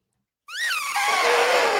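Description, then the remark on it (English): After a moment of silence, a person lets out a loud, shrill trumpeting cry, imitating an elephant. The pitch swoops up, then dissolves into a harsh, breathy blare that holds to the end. “Yeah, that was the worst elephant noise I have ever heard anybody make.”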